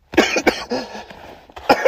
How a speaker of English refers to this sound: Hang on a second. Sorry. Tickle in my throat. You didn't have to hear me cough any more of that up.